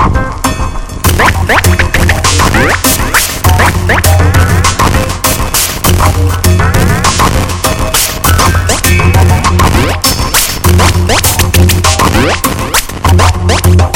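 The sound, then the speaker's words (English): A dense, loud wash of tape echo with heavy feedback, sharp repeating hits smearing into a continuous swirling roar with rising and falling tones and a steady low throb underneath. “Now echo by means of magnetic tape feedback. Excessive feedback can be used for dynamic sounds.”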